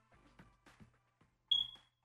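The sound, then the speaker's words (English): A single sharp, high-pitched chirp from a smoke detector's low battery, short and fairly loud with a brief ringing tail, following a few faint, muffled background sounds. “It's the smoke detector. It's the chirp.”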